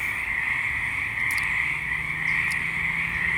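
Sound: frogs croaking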